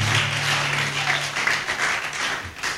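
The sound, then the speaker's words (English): An audience applauds the choir, with dense, overlapping clapping that holds steady and fairly loud for about three seconds. A faint low hum sits underneath at the start. “Let's clap for the choir again.”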